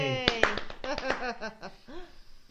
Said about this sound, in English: Clap. That's a really long clapping sound. Yay! Woo! It's like that tic tac noise.